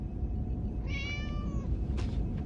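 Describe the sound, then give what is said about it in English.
A single drawn-out meow from Spot the cat, rising then falling in pitch, clearly audible over a steady low background hum, followed by a short soft rustle. “Unlike a canine, Spot does not respond to verbal commands.”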